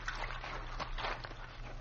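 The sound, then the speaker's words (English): Water sloshes and splashes steadily for a couple of seconds, with a few heavier surges as a person crawls out of the water onto a bank, moderately loud, with no voices. “Now, crawl out of the water.”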